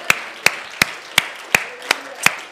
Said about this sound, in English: Can we give the Lord a great hand clap of praise one more time? Hallelujah. We thank you, Jesus.